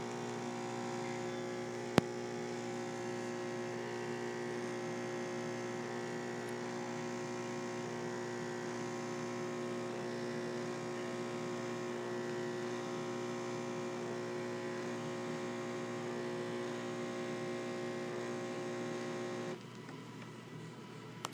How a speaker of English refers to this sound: Ladies and gentlemen, what you just heard was the sound of a very high-tech espresso machine found here at this particular hotel. I think where we're at is called the Court of Ale.